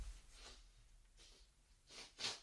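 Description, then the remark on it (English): A few short, breathy sniffs as someone wipes their nose, spaced irregularly, with soft rustling between them and a sharper, louder sniff near the end; no talking. “I feel like I need to wipe my nose.”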